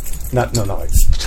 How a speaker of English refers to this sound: No, I know. Just a lot of locks. You'll see.